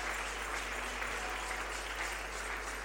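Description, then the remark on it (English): An audience claps steadily to the Lord Jesus, a dense wash of many hands sounding together at an even level throughout, with no voices standing out above it. “If you are clapping, please do it very well to the Lord Jesus.”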